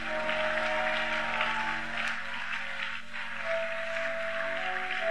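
A church audience claps together as a clap offering to Jesus, a dense, steady burst of applause lasting several seconds, with a sustained keyboard chord humming underneath and no one speaking.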